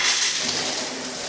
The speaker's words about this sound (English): That sound of running water. Whew, got it. Really makes me want to perhaps go for a pee.